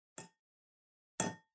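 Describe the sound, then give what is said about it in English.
Two sharp taps on a wine glass, the second louder and ringing a bit longer, each with a bright, brief chime that fades quickly into silence. No voices. “Are you hitting the gong wine glass?”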